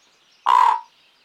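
A single harsh, raspy croak from a pet raven, short and fairly loud, standing alone against a quiet background with no talking.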